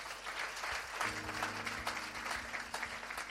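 A church audience applauds with steady, dense clapping throughout as the preacher comes forward, and a low sustained organ-like tone comes in partway through beneath the applause.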